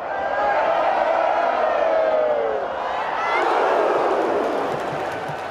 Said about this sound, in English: Like a piece of music that if you just sit and listen to the crowd, you hear like how it swells and dives and peaks and then suddenly bursts. It sounds to me like an orchestra.